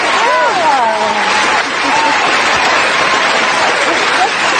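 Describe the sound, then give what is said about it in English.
An applause sound effect: a dense, steady wash of clapping that holds at full loudness for about five seconds, with a few voices cheering over it at the start. “Oh, we got to do the applause.”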